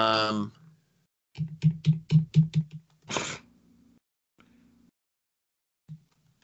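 A quick burst of about six sharp, loud clacks on a computer keyboard in a steady rhythm, followed by a short hissy breath-like burst and a few faint scattered taps.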